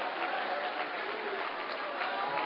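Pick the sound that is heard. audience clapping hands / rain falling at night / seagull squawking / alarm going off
audience clapping hands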